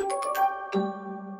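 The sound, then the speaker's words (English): A two-note doorbell chime rings out clearly, a higher ding followed by a lower, sustained dong that slowly fades, with no voices. “Ding dong, Las Culturistas calling”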